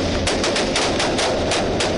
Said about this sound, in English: So when we first knocked on the door of the house, the shooting started. A fierce gun battle erupted.